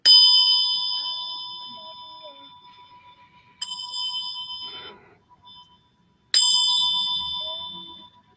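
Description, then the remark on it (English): A bell is struck three times at unhurried intervals to start a meditation, each clear metallic strike ringing out and slowly fading into a shimmering decay before the next. No voices are heard. “I'm gonna start it off with the bell.”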